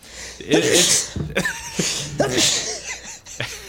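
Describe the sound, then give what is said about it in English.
Two loud sneezes about two seconds apart, each a sharp burst with a voiced, breathy edge, separated by short vocal noises and breaths. “How awesome are sneezes, by the way?”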